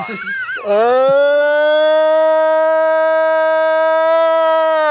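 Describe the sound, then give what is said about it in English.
A long, loud, mournful howl, a purported Sasquatch howl known as the Ohio Howl, recorded in Ohio, rises sharply after a brief rough onset, then holds a steady, siren-like tone for several seconds, clear with no other sounds. “Other times, you hear the long, sort of this mournful man has definitely buried some bodies. Howls, often described as the Ohio Howl, because Matt recorded that for the first time.”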